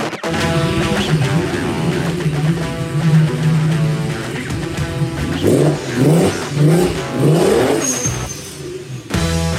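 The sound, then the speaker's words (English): A car engine roars, its pitch climbing and dropping through several hard revs and accelerations, loud and steady for most of the stretch before cutting off abruptly at the end. “Those car sounds were courtesy of Josh Maldonado.”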